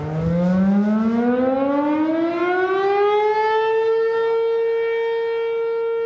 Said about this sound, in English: For the record, we never saw anyone pause for a moment of silence during the siren. Attitudes about the siren in Minden seemed pretty racially polarized.